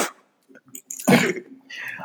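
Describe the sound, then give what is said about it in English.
A single harsh, raspy throat clearing bursts out midway, loud and brief, framed by softer breathy huffs and small mouth noises before and after. “Let me clear my throat for this.”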